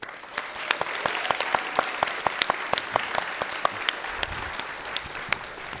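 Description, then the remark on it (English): An audience applauds steadily as a guest is invited onto the stage, a dense wash of clapping with sharp individual claps standing out, holding at an even moderate level for about six seconds without any clear voices on top. “I like that hushed wow of the crowd.”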